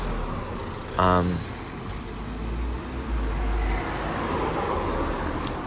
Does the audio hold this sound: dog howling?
no